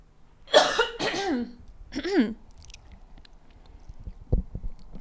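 A man clears his throat twice in quick succession before reading Psalm 68 aloud, a rough, raspy burst followed by a shorter hacking rasp, fairly loud, then a few faint soft clicks in the quiet afterward.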